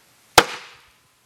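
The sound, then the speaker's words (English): A single sharp, loud crack of a big stick striking a hard surface in a demonstration, with a brief bright ring that decays within about half a second, followed by silence. “So he also had a big stick. And he would go, no, he would do it not like that.”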